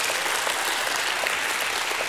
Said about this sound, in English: His name is Jesus. He is worthy of our praise. Give him a hand clap.